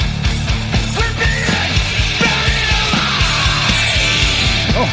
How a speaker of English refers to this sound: Oh, hey. Wow, into the death metal growl.